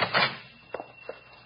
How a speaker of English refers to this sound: stand back. I'll open the door.